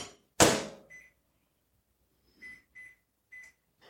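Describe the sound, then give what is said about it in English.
A sharp clunk, then a microwave oven's keypad gives four short, high-pitched electronic beeps at uneven intervals as it is set to about a minute on high to melt butter in a lidded glass container, with no talking. “So I'm going to give that about a minute on high.”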